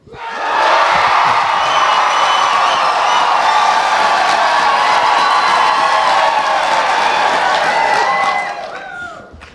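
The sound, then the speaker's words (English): A group of people cheers and yells loudly together for several seconds, a sustained wall of raised voices that holds steady before cutting off abruptly. “So, here we go, on three, much louder than before.”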